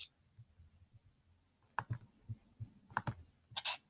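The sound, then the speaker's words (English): Computer keyboard typing in quick, irregular bursts of sharp clicks, fairly quiet, with a couple of louder keystrokes near the end and no voices. “Listening for typing.”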